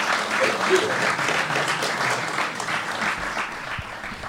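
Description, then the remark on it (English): An audience applauds two guests steadily, the dense clatter of many hands clapping at once at a consistent, fairly loud level before easing slightly toward the end. “Can we get the big round of applause for Cormac O'Sullivan and Sean Boylan?”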